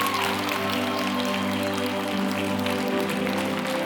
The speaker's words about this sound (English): Come on, buddy. Come on. Clap for him. Come on, let's stand up and clap.